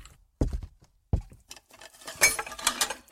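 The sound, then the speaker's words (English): A glass, just emptied of a drink, drops into a sink with two sharp knocks, then a jumble of bright clinks and rattling clatter as it settles against the basin, fairly loud with no talking. “Seth gulped down the rest of his drink and dropped the glass into the sink.”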